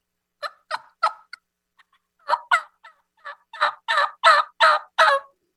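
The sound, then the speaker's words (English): A person imitates a turkey hen with a string of about fifteen sharp, raspy yelps, starting in short bursts and building into a louder, faster, more excited run near the end. “And by combining those two, all of a sudden you've got a hen that goes from one level of excitement to a whole different gear.”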